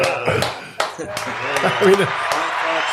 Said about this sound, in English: I think we need the applause.